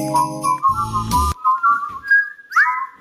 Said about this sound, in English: whistling your Christmas favorites.